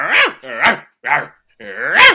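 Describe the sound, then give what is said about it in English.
A dog lets out four loud, drawn-out barks mixed with throaty growling, each lasting about half a second with brief pauses between, and no one speaking. “Well, you are a very clever doggy.”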